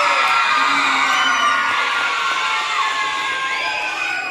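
A crowd of boys cheers and whoops loudly for their team captain in a boys' side versus girls' side competition, a sustained, high-pitched mass of shouting voices that holds steady for several seconds without letting up.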